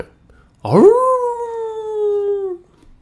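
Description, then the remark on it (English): A single drawn-out dog howl, rising sharply then holding a steady wavering pitch for about two seconds before cutting off, loud, with no talking over it. “It's my backing vocals there. Woof, woof.”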